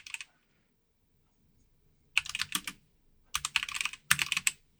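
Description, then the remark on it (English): Rapid bursts of clacking computer keyboard typing, fairly loud, arriving in several quick flurries separated by short pauses, with no talking. “Okay, apologies for the typing.”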